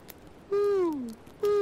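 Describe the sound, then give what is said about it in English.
An owl perched up on a ledge hoots in low, harmonic calls: one long note sliding gently downward in pitch, followed by the start of a second, with no talking over them. “It's just a regular owl. It's hooting instead of doing the bird squawk.”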